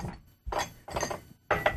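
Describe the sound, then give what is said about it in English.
A microphone gets knocked over by a cat that has climbed into a recording soundbox, giving a few loud clattering knocks and thumps in quick bursts, with a faint clink, and no talking. “And my cat knocked over my microphone.”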